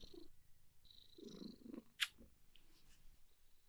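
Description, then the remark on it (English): A cat purrs in a soft, steady, low rumble with a faint rhythmic throb. One brief sharp click breaks through partway, and no one speaks. “That's some good ASMR.”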